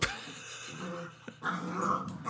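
A puppy, Ben Solo Barry, growls low and whimpers in short bursts, the grumbling rising and falling over about two seconds with a brief yip-like catch partway through.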